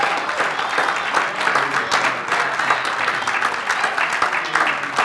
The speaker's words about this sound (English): Let's give him a hand clap offering this morning.